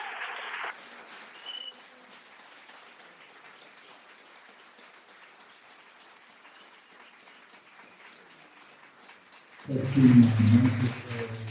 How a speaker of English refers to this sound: I already got the applause, so you don't have to applaud again. But if you want to...